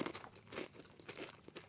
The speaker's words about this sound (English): And the rest of it kind of doesn't taste like much, but has a good crunch to it. Really nice crunch.